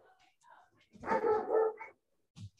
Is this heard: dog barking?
yes